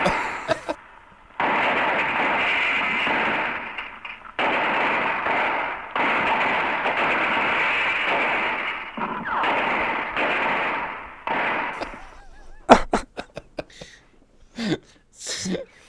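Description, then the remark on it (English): Gunshot sound effects: several long, loud bursts of harsh, noisy rapid fire separated by short gaps, followed by a few sharp, isolated cracks near the end. No one speaks. “And here's some shooting guns again.”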